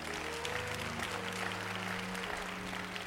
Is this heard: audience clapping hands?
yes